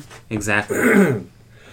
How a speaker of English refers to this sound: Excuse me, I just have a cough.